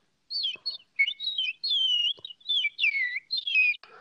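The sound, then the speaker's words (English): A voice imitating distant birdsong heard through a window from a second story: a steady run of high, whistled chirps and warbling trills, fairly soft and slightly muffled, with no talking. “Yes, I can do an impression of birds at a distance as heard through a window from a second story.”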